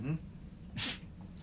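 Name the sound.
dog sneezing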